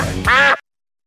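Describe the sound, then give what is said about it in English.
A single loud duck quack, nasal and raspy, lasting about half a second before cutting off into silence. “I'm not mad at Harry Douglas being scared of ducks.”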